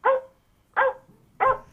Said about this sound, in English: I couldn't hear it over the barking dog.